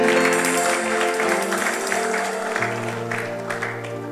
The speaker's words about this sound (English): Give the Lord a good clap of his hand.